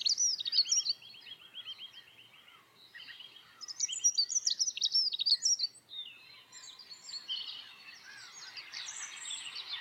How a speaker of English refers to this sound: the bird species that rated the highest for having a calmative restorative effect were the dunnock